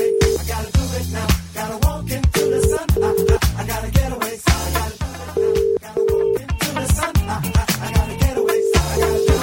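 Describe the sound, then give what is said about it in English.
An outgoing call's ringing tone repeats in steady double bursts, ring-ring then a pause, about every three seconds, heard over busy, loud rhythmic music. “Here we go. It's ringing.”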